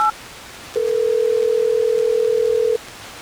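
A single ringback tone from an outgoing phone call placed by radio hosts of Hot 101.5 in Tampa Bay: one steady, clear two-second electronic ring, preceded by a faint short beep, with no voices.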